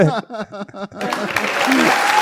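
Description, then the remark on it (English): A voice speaks briefly, then a crowd breaks into steady, dense clapping that fills the rest of the moment, loud and continuous with a bit of chatter mixed in. “People are clapping.”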